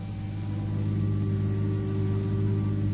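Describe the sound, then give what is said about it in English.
A car engine runs steadily at an airport, a low, continuous droning hum with a faint whine above it, holding an even level for the whole stretch with no voices. “No one knew of it, only George the butler, who met him with a car at the airport.”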